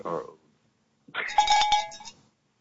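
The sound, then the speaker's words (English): A bell rings in two bursts: a short clang, then after a pause a longer metallic jangle with rapid clattering strikes, moderately loud, with no voices. “Oh, that's a fucking, man, that's a crowd bell.”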